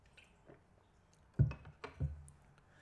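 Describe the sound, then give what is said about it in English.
A few soft wet mouth sounds: a small slurp and a couple of quiet gulps as someone sips water, with short pauses between them and no talking. “I'm going to have a little sip of water here.”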